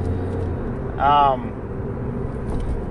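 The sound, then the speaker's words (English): Steady low rumble of road noise inside a moving car on a hot day, constant and fairly loud throughout, with a brief higher tonal chirp rising over it for a moment near the middle. “just kind of a way to rant while I drive to give me something to do, to keep me from smoking a cigarette”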